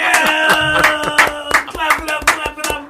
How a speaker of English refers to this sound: Clapping them hard.